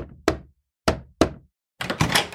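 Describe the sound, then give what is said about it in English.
Three sharp knocks on a wooden door of a farm family's house, spaced unevenly, followed by a quicker flurry of rapping; no voices. “It was time for the spring planting, and they needed the help on the farm, so when Winston knocked on the door, Annie's father hired him and sent him up to Paul's cabin to spend the night.”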